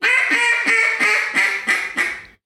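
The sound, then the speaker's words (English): A duck call blown in a quick run of about seven sharp, nasal fine hen quacks, made by using the throat to hold the air down, evenly spaced and fairly loud, with no talking over them. “So I'm in the back of the call, I'm going, not pinching that air, but really using my throat to hold that air down to get that fine hen.”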